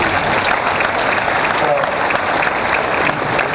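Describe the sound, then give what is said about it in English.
Steady, loud clapping from many hands fills the whole stretch, a dense crackling wash of applause without pauses or a clear beat. “I'll applaud that.”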